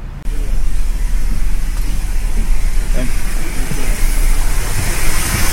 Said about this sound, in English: Oh, but here's the bus. Yay.